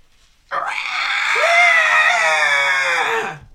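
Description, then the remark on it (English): A loud, piercing screech of a young white dragon erupts suddenly and holds for about three seconds, shrill and rasping with a wavering pitch, then trails off into silence. No one speaks. “You find yourself deafened by the screeches of the young white dragon.”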